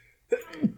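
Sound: sneeze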